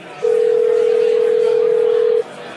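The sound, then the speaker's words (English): A phone call to a shop is placed and one steady electronic ring tone sounds for about two seconds, clear and fairly loud over a faint hiss of background noise. “So I was just going to look at the shop number and try and get them there.”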